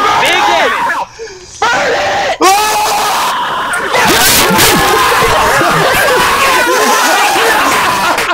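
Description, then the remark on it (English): Several gamers scream and yell over one another during a video game raid in a loud, continuous frenzy, with only a brief dip near the start before the shouting surges back up and carries on to the end. “It's just like it's just Dragon Ball Z screaming at this point.”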